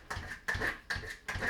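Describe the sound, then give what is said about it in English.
A dog bangs on a door in four steady, evenly spaced thumps, each a short bursty knock. Fairly quiet, with no talking. “There goes my dog banging on the door.”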